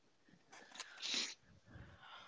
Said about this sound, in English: I'm sneezing again, guys.